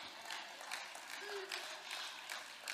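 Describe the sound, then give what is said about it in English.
An audience claps together in a steady, dense patter of many hands, soft, with the applause swelling in brief waves over a few seconds. “Now you tithe, we clap, you clap, we're excited.”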